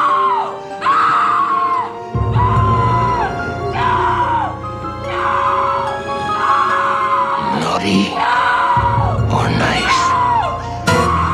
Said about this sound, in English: A really great yeah. scream, by the way. Woo! I got chills. Oh, yeah. For a sustained, yeah. you know, 15, 20 yeah. seconds, she is belting. It was a heck of a scream.